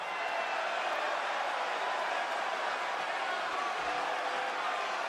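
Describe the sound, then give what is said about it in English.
A large arena crowd fills the space with a dense, continuous murmur, many voices blending into a restless churning roar as people say different things to one another throughout the crowd, with no single cheer or shout standing out. “You hear the crowd boiling? That's the that's not a cheer, that's not a boo, that's not a roar, that's a boil.”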